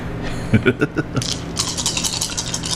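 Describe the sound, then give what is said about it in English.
Dice rattle in a cup with a few sharp clicks, then tumble and clatter across a hard surface in a quick burst of rolling, for a perception plus awareness roll. “So, give me a perception plus awareness roll now.”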